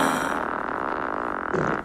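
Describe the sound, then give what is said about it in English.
A drawn-out, raspy fart sound effect crafted for a TV show, loud, buzzing steadily for almost two seconds with a brief sputtering swell just before it cuts off. No one speaks. “A fart, yeah. Yeah, that a fart we crafted.”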